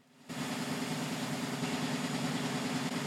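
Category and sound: household object, washing machine spin cycle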